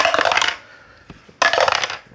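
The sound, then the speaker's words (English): Four dice rattle and clatter across a hard table for a hunt roll in a game, in two fairly loud bursts, separated by a short pause with a single faint click, and no voices. “Yeah, so, go ahead and make me a hunt roll.”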